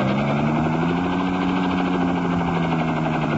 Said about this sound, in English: Suddenly, the helicopter zooms downward swiftly.